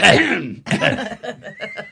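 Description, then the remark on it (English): A person lets out a loud, forced cough to mask opening a beer bottle in a theater, followed by a few shorter, staged cough bursts, blending into laughter; no words are spoken. “And so when I open my beer in the theater, I go...”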